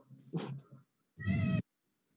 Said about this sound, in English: I'm sure you heard that in the background, but I heard a kitty. And it wasn't a kitty.